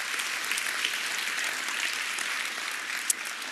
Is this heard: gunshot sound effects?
no